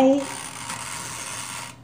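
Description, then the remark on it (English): A toaster oven clicks mechanically as it preheats, over a steady hiss for nearly two seconds, opening with a brief low tone, then cutting off abruptly at the end; no one speaks. “My toaster oven makes a lot of noise. That's why I try not to leave it on, because it's going to be clicking like the whole time.”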